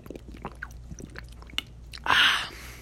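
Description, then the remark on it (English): Someone drinks water: a run of small wet mouth clicks and soft gulps, then a louder, breathy burst near the end, like a satisfied exhale after swallowing. “I'm drinking water right now.”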